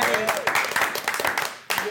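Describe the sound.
A short round of applause: dense, crackling clapping from a small group, with a voice or two calling out over it. The clapping drops out briefly near the end, then picks back up.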